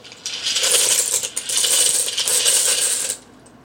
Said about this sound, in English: We're going to cook the pasta directly in the sauce, which is super easy. All you need to do is pour the pasta right in there.